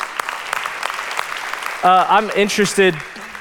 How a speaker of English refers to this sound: Hey, glad that you're here in 2024, the first service of 2024. Give yourself a round of applause for coming to church.